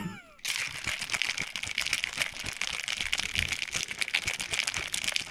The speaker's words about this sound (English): So you put all that in the shaker, you shake it up with some ice. And you pour it in a short glass, kind of like a bourbon style glass. Yes, girl. It sounds a little bit like this.